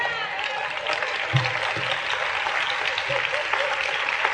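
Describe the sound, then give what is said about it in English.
An audience applauds for their country, a dense, even wash of many hands clapping at a constant level for the whole stretch, with a few faint low thumps and no speech over it. “Well, when you get some of the rest of you get some of your freedom taken away, you'll be glad to clap for your country also.”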